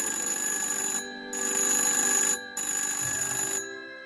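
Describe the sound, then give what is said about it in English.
A telephone rings in three loud, bright bursts separated by brief pauses, steady, with no voices present. “Even more unluckily for everyone involved, the phone that was accidentally flooded with concerned and anxious phone calls belongs to none other than the city's most experienced of warriors,”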